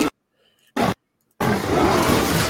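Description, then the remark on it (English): A lion roars loudly: two short growling bursts separated by silence, then a long, rough, sustained roar that fills the rest of the moment. “That's the moment the lion penetrated right there.”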